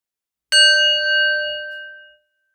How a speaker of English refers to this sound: We'll begin with a bell.